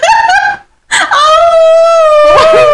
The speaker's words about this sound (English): No, what if it's not a woof? Woof, woof. Maybe it's a high-pitched bark. Maybe it's like a dog now. Maybe it's a collage of howling and barking.